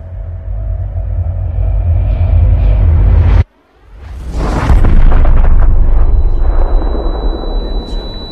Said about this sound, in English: I'm standing by this fax machine, trying to send some documents out to our office in Philadelphia. And I hear this incredible explosion.